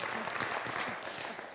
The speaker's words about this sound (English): So, and finally, did we clap for you guys? Let's clap for you guys. All right. We applaud you as well.